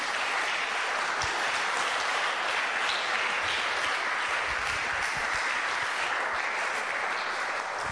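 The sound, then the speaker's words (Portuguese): A large crowd stands and claps for Jesus steadily and loudly throughout, a dense, sustained wash of applause from many hands with no speech over it. “And clap for Jesus.”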